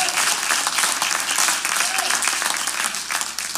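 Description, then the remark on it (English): An audience at a church service applauds God with a hand clap of praise, loud, dense, steady clapping that carries on for the whole few seconds, a few voices faintly mixed into the ovation. “Y'all ought to give God a hand clap of praise for the hope.”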